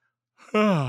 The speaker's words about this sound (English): It's a yawn right there.